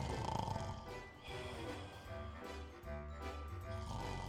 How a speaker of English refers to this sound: Yeah, dude, that's my dad snoring. They're asleep.